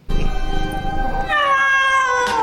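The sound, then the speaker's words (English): A drawn-out, wavering cat meow made by a human voice for a CG animated scene, loud, rising into a strained, whiny yowl before trailing off, with no other sounds around it. “I never even thought about it, but you can tell that's a human making that cat sound.”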